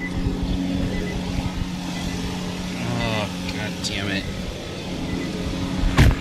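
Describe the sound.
An electric car's powered door whirs open as the car is about to be plugged in for charging, with a brief rising and falling motor whine over a steady idling hum, ending in a sharp clunk. A person mutters briefly during it.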